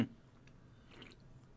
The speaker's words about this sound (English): Nothing like a sipping sound in the middle of a podcast.